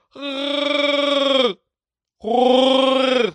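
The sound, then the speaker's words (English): Weddell seal vocalizations from Antarctica: two loud, drawn-out, buzzy groaning calls with a rough, pulsing, bleat-like tone, each lasting over a second and separated by a short silence. “The article starts with saying, above water, they sound like Wookiees.”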